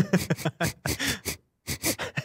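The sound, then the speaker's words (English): A voice imitates sniffing, like an inspector sniffing around a returned rental car: a quick series of short, breathy bursts, a brief pause, then several more sharp sniffs, loud and rhythmic. “And they start sniffing around.”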